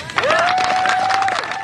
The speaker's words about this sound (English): She stands there for a minute, chin up, unsmiling, as people clap and cheer and reporters begin to holler out questions.